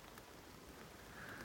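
Steady spring rain patters down at dusk in Bickley Wood near Bristol, a continuous soft hiss of drops falling from a beech and oak canopy onto ferns, ivy, bramble and ground, even in level, with no voices.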